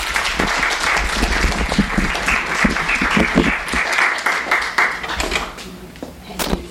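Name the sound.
audience applause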